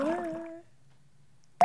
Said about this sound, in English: Drip.